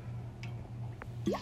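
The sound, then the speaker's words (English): Small, quiet wet sounds of someone sipping water, a couple of soft slurps ending in a short gulp, over a low steady hum with no talking. “Excuse me, I need some water.”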